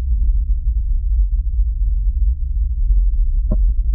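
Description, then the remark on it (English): Amplified seismometer vibrations recorded on Mars: a steady, deep rumbling drone throughout, broken near the end by two short, sharp knocks made by the arms, with no voices. “They have to amplify the sound a little bit just so you know, but this is what it is. This is on Mars right now.”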